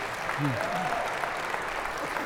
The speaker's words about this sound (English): Come on down. Let's give this guy a round of applause.